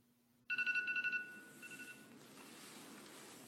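A phone, used as a wake-up alarm, rings with a bright, pulsing electronic trill, a burst of rapid beeps followed by a shorter, fainter repeat, then fades into a steady background hiss.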